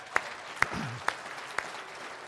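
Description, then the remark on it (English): Four sharp, evenly spaced hand claps ring out at a steady rhythm as applause for God, with a faint low murmur of voice briefly underneath. “Let's give God one more round of applause.”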